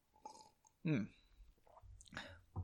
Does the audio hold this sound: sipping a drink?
yes